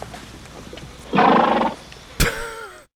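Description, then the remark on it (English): Clover the horse vocalizes: a loud, breathy call lasting about half a second, a brief pause, then a sharp whinny whose pitch slides downward as it fades. No one speaks. “I guess we didn't really need to hear from Clover the horse, but yes, we did.”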